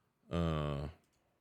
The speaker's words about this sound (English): Excuse me. Like yawn. Yawning.